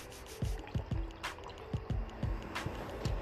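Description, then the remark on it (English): Someone sips a drink, with a series of about seven soft, wet gulping swallows at an uneven pace over a faint steady hiss. No one talks. “Let me get a sip. Gotta take a sip.”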